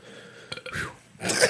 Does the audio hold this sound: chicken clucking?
no